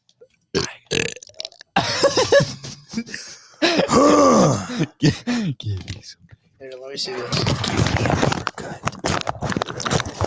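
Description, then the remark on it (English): Loud, drawn-out burps, several in a row with short pauses, followed by rough, noisy throaty sounds. “I'm going to give you guys a little burp.”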